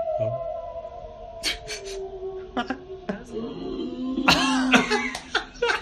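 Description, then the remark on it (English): An eerie, drawn-out Halloween whimpering sound effect with wavering high-pitched tones, broken by several sharp, breathy bursts like coughs or sobs, moderately loud. “Where's my little whimper?”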